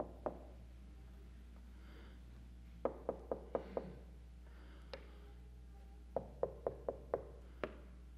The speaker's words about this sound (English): Will I open the door to him when I hear him knocking? That he can come in and he and I can have fellowship together.